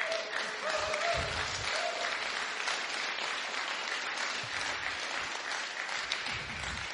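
An audience claps steadily for several seconds, a dense, even wash of many hands that stays strong throughout, with a faint voice or cheer briefly audible near the start.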